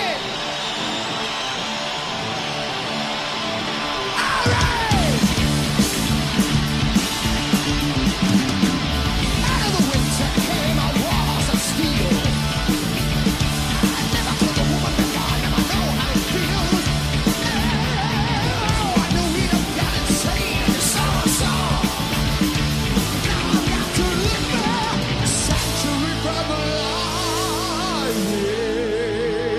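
A loud, dense live heavy metal track kicks in after a few seconds of quieter buildup, with screamed, yelling vocals riding over pounding drums and distorted guitars until the end.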